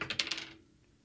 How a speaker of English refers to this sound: Now, are the dice going to re-roll? Are they going to double down, or are they going to give us another ticket to cash, hopefully, with the old total?